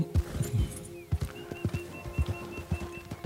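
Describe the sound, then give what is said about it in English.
A horse walks at a steady pace, its hooves clip-clopping in an even rhythm, with a thin, faint bird call in the background and no talking. “This horse shits a lot.”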